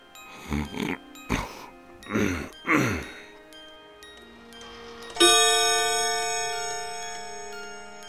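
A few heavy snores as Scrooge sleeps in his bedroom, then a single loud clock bell striking one, whose ringing tone hangs in the air and slowly fades away.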